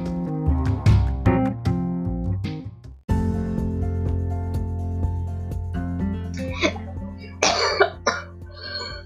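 coughing fit

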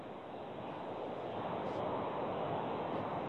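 car interior road noise

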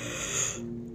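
yawn

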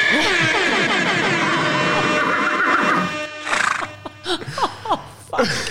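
horse neighing sound effect

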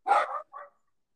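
dog barking

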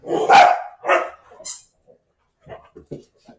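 dogs barking

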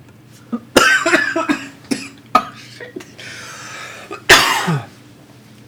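coughing

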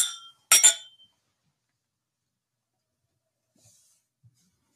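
glasses clinking together

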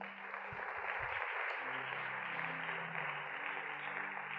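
audience clapping

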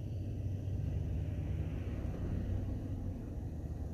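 car interior rumble

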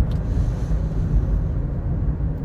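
car interior

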